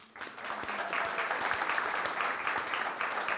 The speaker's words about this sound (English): Wave if you've got one of the badges that says, I'm here to serve. I see that lady there. Wave your hand, please. I'm here to serve. Okay. Thank you so much. Let's clap them.